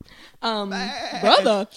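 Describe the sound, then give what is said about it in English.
A person imitates a goat with a single drawn-out, wavering bleat, loud, lasting just over a second with a quavering rise near the end. “The goat is like, go.”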